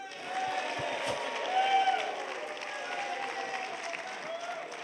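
A live audience at the Sigma Conference in the Dominican Republic claps and cheers steadily for several seconds, a dense wash of applause with scattered shouts and a whistle rising through it, swelling slightly midway.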